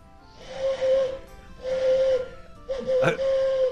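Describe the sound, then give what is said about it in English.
Three breathy, hollow hoots blown through cupped hands in imitation of an owl, each about a second long at a steady mid pitch with airy hiss, the last wavering briefly. “Owl call with no instruments other than cupped hands.”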